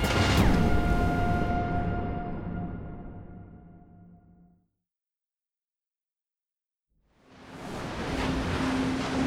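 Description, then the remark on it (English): A rushing wash of Atlantic Ocean surf at Myrtle Beach with a warm, saltwater breeze hissing fades away to a few seconds of silence, then swells back in just as loud, with no voices. “The warm, saltwater breeze rolled off the Atlantic Ocean and into the streets of Myrtle Beach.”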